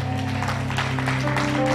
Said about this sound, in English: Come on, clap it up for Pastor Hernan. And to be honest, clap it up for Jose for translating.